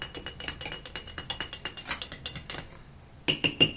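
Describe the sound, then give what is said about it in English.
A squeaky chair creaks in a quick, steady rhythm of sharp clicks with thin high-pitched squeals. It falls silent for a moment, then starts up again, with no voices. “Squeaky chairs are back, listeners.”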